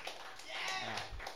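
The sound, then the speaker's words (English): A brief patter of audience clapping at a gig, a soft, dense crackle of many hands that swells slightly midway through and mixes with faint crowd murmur. “I was expecting at least the Americans to clap that.”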